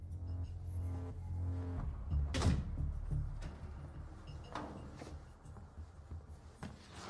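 A door swings shut with a single solid thud over a low rumbling background, followed by a few faint knocks and shuffles.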